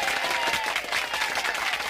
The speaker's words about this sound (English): Oh, hold on. Do we have, like, any applause out there? Can we get that again, man? Say it again. 36 years to hell.